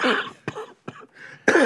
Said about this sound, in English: Okay, so I'm still... I'm actually on antibiotics right now, so I am trying to get rid of this cough.